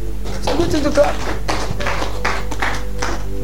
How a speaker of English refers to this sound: It's a good thing to clap.